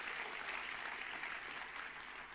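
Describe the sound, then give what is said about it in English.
A church audience gives the Lord a clap offering, clapping steadily, a dense wash of many hands with no distinct rhythm, holding a constant level throughout without any talking over it. “Go ahead, give the Lord a clap offering.”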